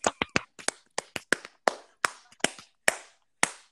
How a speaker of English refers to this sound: Everyone give a round of applause to me. Why are we clapping? What did I do?